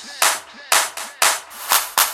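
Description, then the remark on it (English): Six punchy drum machine clap samples, played as part of a sound system check, strike in a syncopated pattern, each a bright, noisy burst with a short reverberant tail, loud and alone with no voices. “Claps.”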